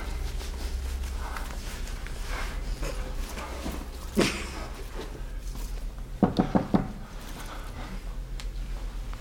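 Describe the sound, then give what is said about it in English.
A quick series of four firm, fairly loud knocks on a door, rising over a steady low background hum, with one softer thump a couple of seconds earlier. “Oh, don't open the door.”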